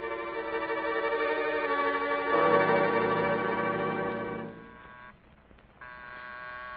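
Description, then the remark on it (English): A bell, rung by Miss Maggie, rings steadily for several seconds with a bright, sustained buzzing tone. It swells briefly, fades, cuts out for a moment near the end, then resumes. No one speaks. “That's Miss Maggie ringing.”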